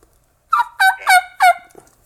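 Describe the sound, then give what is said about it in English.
Four high-pitched turkey yelps from a dry mouth call whose reeds have not been separated, so the reed does not vibrate to give rasp; evenly spaced and fairly loud, thin and clear, followed by a faint trailing note; no one speaks. “You can hear that high pitch. The reed's just not vibrating to get that rasp, so it's just all high pitch stuff.”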